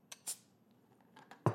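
A seltzer can is cracked open: a few sharp metallic clicks and a brief hissing burst, then a louder clack at the end. No one speaks.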